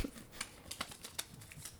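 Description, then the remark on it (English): Quiet rustling and crinkling of paper slips with names being drawn from a pile, a handful of short crisp scrapes in an irregular rhythm, with no talking. “We're drawing the last names.”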